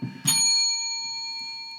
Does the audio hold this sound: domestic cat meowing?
no